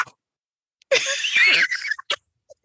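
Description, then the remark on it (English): A worn squeaking toy with a mangled leg and no foot lets out one breathy, wheezy squeak of about a second, rising and falling slightly in pitch, followed by a couple of short airy puffs. No one speaks. “So I was told, and remember I told you it's supposed to squeak, right?”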